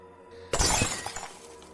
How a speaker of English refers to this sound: And I try to break a mirror.